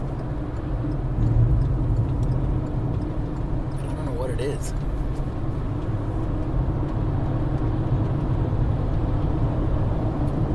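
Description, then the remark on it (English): Steady, loud road rumble from a semi truck just ahead, with a brief odd whining, rattling sound rising out of it partway through; a voice says a single word. “That's the semi truck in front of me making a weird noise.”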